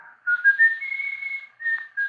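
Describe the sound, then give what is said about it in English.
A person whistles a clear, high tune with a rising line that holds a long sustained note, then stops briefly before two more short notes. No one talks. “But after the doors opened, I noticed that the whistling stopped, like being cut in two by a knife.”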